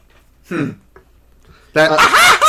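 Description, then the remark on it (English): A person imitates the cackling laugh of Scratch the Robot Chicken: a short squawk, a brief pause, then a loud, harsh, wavering burst of cackles. “They even had one of the minions of Lord Boxman actually do the laugh that Scratch the Robot Chicken had.”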